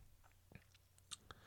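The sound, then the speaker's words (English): A quiet sip of wine from a glass, heard as a few soft wet mouth clicks and a brief slurp with short pauses between them; nobody speaks. “And let's dive right back into it after I have that glass of wine.”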